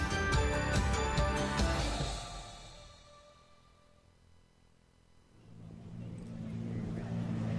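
A powerful rocket cycle engine, being warmed up at a racetrack arena, revs loudly, its roar dying down to a low idle before building up again into another strong rev.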